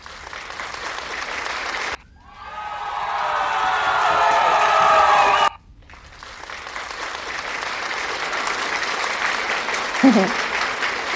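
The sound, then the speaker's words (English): A crowd applauds steadily with scattered cheers for key workers, broken by two abrupt cuts, the middle stretch sounding denser and more echoey, with a brief whoop near the end. “Right, first of all, I'm going to start with the effects last week's a light theme of the clapping and cheering.”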